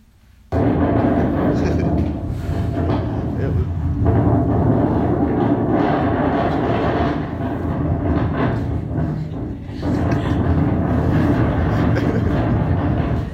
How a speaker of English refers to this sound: And so this is me coming up to the beginning part. This is the parking lot across from Hannaford. And just hear the wind right here.